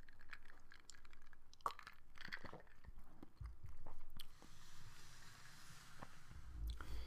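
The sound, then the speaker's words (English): Quiet sipping of a drink, with a few soft slurps, wet mouth clicks and gulps spread over several seconds against a low background hiss; no one speaks. “So I'm going to take a sip and go on with the program.”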